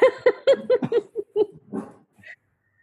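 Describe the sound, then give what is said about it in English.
Several dogs bark in a quick, uneven burst of sharp barks and yips lasting about two seconds, followed by a brief high whimper before it goes quiet. “Well, the dogs are barking, so that'll be a great addition.”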